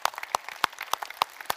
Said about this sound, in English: Let's clap our hands to the Lord today.